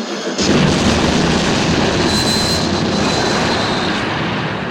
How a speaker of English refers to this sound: He falls spinning onto the plunger, knocking it down and dying as the bridge blows up. Yeah. And the train goes right into the water.